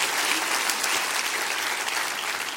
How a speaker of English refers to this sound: Come on, clap your hands. That's good stuff.